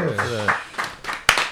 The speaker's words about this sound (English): Clap it up.